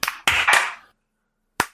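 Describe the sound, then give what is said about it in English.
A quick cluster of three loud, slightly ragged hand claps, then a short silence and one final sharp clap on its own, made to sync recordings. No voices. “3, 2, 1, clap.”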